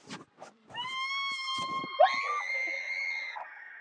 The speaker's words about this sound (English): There's an image in this I am being screamed at.